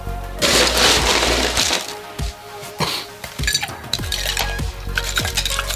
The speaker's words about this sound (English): Then you're going to top that all off with ice.